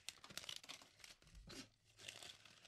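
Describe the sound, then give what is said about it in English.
Crisp rustling and crinkling of blank notebook paper notes being handled, with several short bursts of crumpling over a few seconds and no talking. “Let me get my notes ready.”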